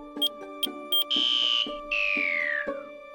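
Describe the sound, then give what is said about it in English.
An electronic banana alarm sounds in short bleeps followed by two long, wavering high-pitched wails that slide downward, loud, over a steady background hum. “Can someone turn off that banana alarm?”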